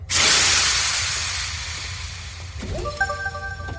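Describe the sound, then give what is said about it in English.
A loud pneumatic hiss bursts out and slowly fades as a door is unlocked with the cycle button, followed by a few short rising electronic tones and beeps near the end. “You unlock the door.”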